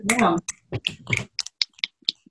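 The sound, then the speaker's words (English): Several people snap their fingers in a loose, overlapping burst of sharp clicks to mark finishing a book, following a brief moment of speech at the start. “We finished the book, guys. Snaps.”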